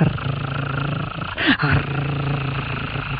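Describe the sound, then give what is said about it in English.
A lion's deep, continuous purr rumbles like an idling engine, steady and throaty, with a brief rougher swell partway through. “And he came over, and he bent down, and she could hear him purr like an engine.”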